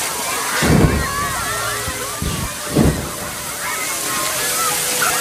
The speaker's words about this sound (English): Yeah, there he is. He's just spraying a kid with water.